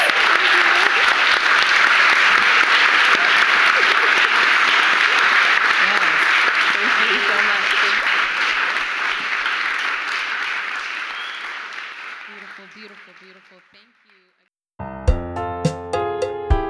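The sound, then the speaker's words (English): A crowd claps loudly and steadily for about twelve seconds, the applause gradually fading out before brief silence, then a bright musical passage begins. “And with that, another round of applause, please.”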